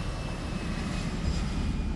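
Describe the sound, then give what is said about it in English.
A steady, continuous roar of jet airliner engines with a thin high-pitched whine running through it, loud and unbroken for the whole stretch, no voices present. “At this point, another long standoff ensued until both French and Algerian authorities capitulated and allowed the aircraft to fly to Paris with one small caveat.”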